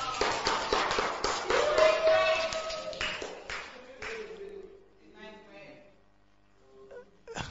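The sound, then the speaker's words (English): Brisk, lively applause from a group fills the first few seconds, then fades out as a person starts talking quietly. “Would you want to clap for now?”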